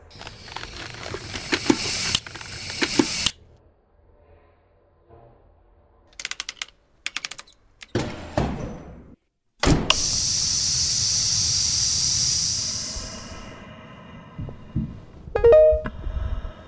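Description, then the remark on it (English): Pneumatic hangar doors of the ship Zazel cranking open: rattling mechanical clicks and heavy clunks, then a loud steady hiss of air for about three seconds that fades, followed by a few more knocks. No one speaks. “I'm cranking the hangar doors. At least the pneumatics are working for now.”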